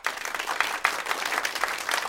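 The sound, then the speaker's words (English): Audience applause sound effect added in post-production: a dense, steady wash of many hands clapping at an even loudness for about two seconds, bright and crackly, with no voices over it. “Pump in applause now.”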